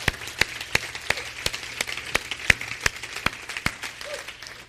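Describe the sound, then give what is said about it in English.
An audience gives the Lord a hand clap of praise, a dense, steady patter of many overlapping claps with sharper individual slaps standing out, sustained at moderate loudness with no talking. “Let's give the Lord a hand clap, shall we?”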